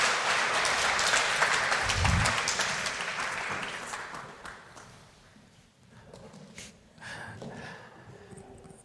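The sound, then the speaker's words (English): An audience applauds with dense, crackling clapping that starts loud and steadily fades over several seconds, leaving scattered softer claps and rustling toward the end. No one speaks. “Come on, give these guys a round of applause.”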